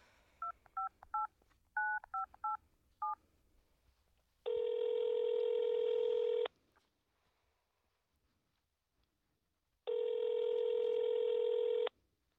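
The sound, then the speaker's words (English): A quick run of about eight touch-tone keypad beeps from a phone dialing, followed by two long ringback tones separated by silence, with a thin, tinny speakerphone quality and no voices. “Okay, just let me dial, okay? I'll hit speaker, and you'll hear.”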